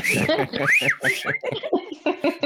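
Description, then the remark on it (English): A person whistles a loud calling whistle: a few quick swooping, rising-and-falling notes, overlapping people talking, with the chatter continuing once the whistle stops. “It would just be like away across the yard, I'd hear that whistle.”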